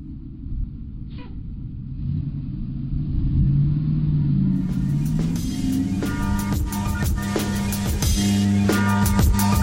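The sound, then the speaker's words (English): A WrestleMania bus engine rumbles steadily, its pitch climbing as it revs and pulls away, growing louder and rougher over the second half with no voices. “Let's it go get on ago. This WrestleMania bus.”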